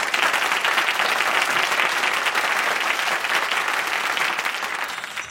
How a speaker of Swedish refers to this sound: Ja, det är sjukt lång tid. En applåd för det. Ja, faktiskt. Applåd.